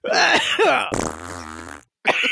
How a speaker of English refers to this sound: No, am I crazy or does that fart sound a little German? It does.